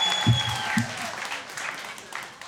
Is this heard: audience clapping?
yes